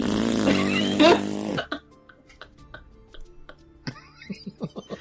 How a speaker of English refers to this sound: Sorry, I accidentally kicked a chair. Yep, that's these leather seats.